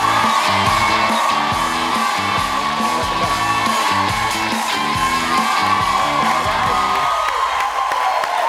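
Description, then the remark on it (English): A large TV studio audience cheers and whoops loudly and continuously as a guest comes on, with shouts and yells rising over a steady roar of applause, while a bouncy band plays underneath. “What a crowd.”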